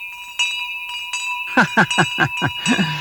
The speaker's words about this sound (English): Folks, that's Timo, the bell ringer, letting us know it's time to go.